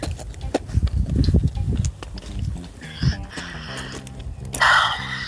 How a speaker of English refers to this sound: Oh, it's still windy.